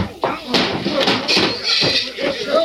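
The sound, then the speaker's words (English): Several sharp punch impacts land in an irregular flurry during a fistfight, blows aimed at the stomach and the chin, with voices and grunting heard between the blows. “One for the stomach, one for the chin.”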